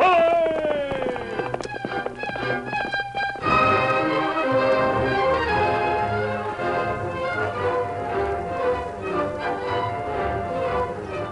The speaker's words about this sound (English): From out of the past come the thundering hoofbeats of the great horse, Silver. The Lone Ranger rides again.